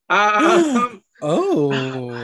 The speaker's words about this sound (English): Gasp.